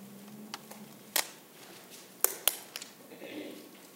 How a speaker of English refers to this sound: It's wonderful to hear those pages turn.